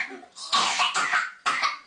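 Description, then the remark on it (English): A child with whooping cough (pertussis) coughs in a run of harsh, rasping bursts, about three in quick succession after a short strained breath, fairly loud with no talking. “A child with whooping cough or pertussis.”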